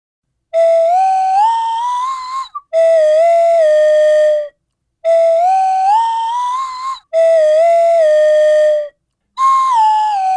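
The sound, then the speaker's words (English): A slide whistle is played in a studio, sounding five long sustained notes. Each pitch glides up or down and holds, with short pauses between. The tone is loud and clear, with no voices. “I just happen to have a slide whistle right here in the studio.”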